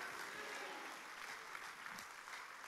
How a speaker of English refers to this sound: You receive that, give God a hand clap of praise.